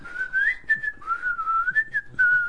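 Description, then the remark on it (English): A person whistles a wandering, slightly wavering tune alone while playing Scrabble, the pitch sliding up and down in a continuous line with a few short breaks, moderately loud. “Well, I don't whistle, but I can whistle better than that.”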